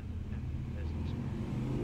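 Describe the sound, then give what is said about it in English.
A loud motorcycle roars by, its deep engine rumble holding steady and heavy for a couple of seconds, with a gritty low-pitched growl filling the whole moment. “And fuck you and your motorcycle, asshole.”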